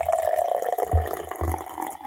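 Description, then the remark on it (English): Liquid pours steadily into a glass for about two seconds, a continuous splashing fill with a brief gurgling dip partway through and no voices. “So listen to this pour.”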